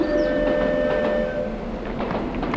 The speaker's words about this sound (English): Okay, we are ready to chase that train. Chase that baby.